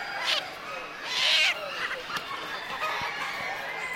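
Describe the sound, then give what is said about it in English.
A couple of short, high chicken squawks and clucks at a poultry show rise over a steady murmur of indoor crowd noise, with a louder drawn-out call near the middle. “And they have a mulberry comb, and they have turquoise earlobes, and they're the only poultry known to have five toes.”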